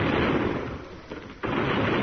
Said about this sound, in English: There they go again. They must be blowing that city of theirs to pieces.